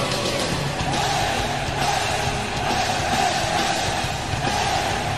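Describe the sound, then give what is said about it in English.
The Rangers' NHL hockey goal horn blares steadily for several seconds, loud and droning, over a dense roar of cheering crowd noise with no clear talking. “Oh, that's the Rangers.”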